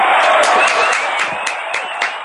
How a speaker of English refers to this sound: I agree. The crowd loves it.